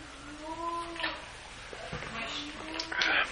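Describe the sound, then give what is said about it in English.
A cat that has come to a shed lets out a drawn-out, wavering meow, followed by softer rising mews and scuffling noises, with no one talking. “Oh, another cat came to the shed.”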